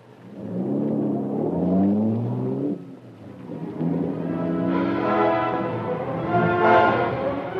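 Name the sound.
car engine accelerating away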